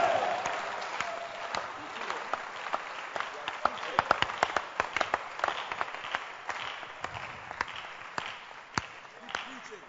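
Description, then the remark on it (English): A crowd at a church gathering with pastors claps for the speaker's church, with many sharp overlapping claps forming a dense, sustained wash of applause that stays fairly even in loudness for the whole stretch, with scattered louder individual claps. “Clap your hands for my church.”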